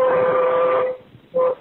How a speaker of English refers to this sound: Hey, I put train horns on my truck. Check it out. See if you can hear it.